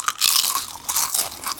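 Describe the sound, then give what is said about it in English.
Loud crunching of Twiglets, a British snack, in sticks: a rapid series of dry, crackly bites and chews running continuously without pause, with no voices present. “A rubber, come on, crunch it.”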